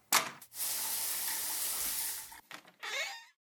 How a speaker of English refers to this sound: I'm going to hit the shower real quick, and I'll be right back.